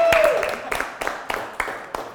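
An audience claps by hand in a steady rhythm, about seven sharp claps spaced evenly apart, with a brief high vocal sound at the very start.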